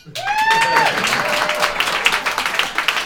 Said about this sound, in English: Ladies and gentlemen, hold your applause.